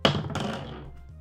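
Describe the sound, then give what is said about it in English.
A die clatters onto a hard tabletop during a game of Dungeons & Dragons, with a sharp first hit, a second bright clack a moment later, then a short rattling tumble that quickly fades to quiet. “Roll that dice again.”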